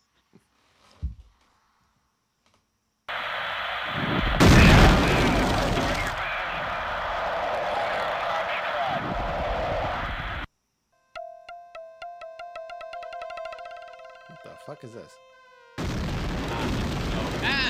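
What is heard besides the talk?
video game explosions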